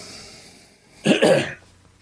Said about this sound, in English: Just when I'm about to talk, I start to cough. Isn't that just the way?